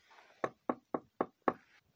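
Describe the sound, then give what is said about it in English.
Five firm knocks on a wooden kitchen door, evenly spaced about a quarter second apart, crisp with a faint background hush and no voices. “Walks next door to Caroline's kitchen door. Again, puts a cup down at the top of her stoop and knocks.”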